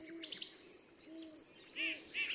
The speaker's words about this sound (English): These are the sounds of birds at 6 in the morning, up in the foothills just west of Boulder.